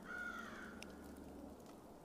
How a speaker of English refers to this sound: Sounds like there are some birds fighting. Can you hear them?